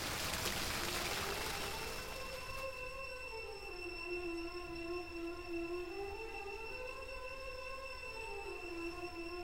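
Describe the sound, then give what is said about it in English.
A steady rush of splashing fountain water fills the first few seconds, then fades beneath sustained musical tones with a slowly shifting melody that take over for the rest. “Fade into water on the way into the music.”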